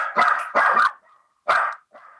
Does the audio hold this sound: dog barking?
yes